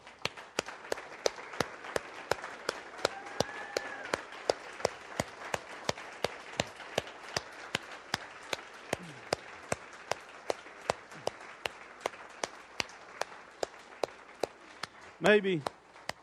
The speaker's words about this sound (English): I tell you what, we ought to applaud God. And, you know, if you need a Yahoo, Hoot, or whatever you need to do, I think we ought to give God a standing ovation for what He's done for us through Christ.